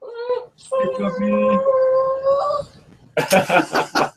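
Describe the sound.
A person imitates a howling dog: two drawn-out wavering wails with a brief gap between, fairly loud, followed by a burst of people talking.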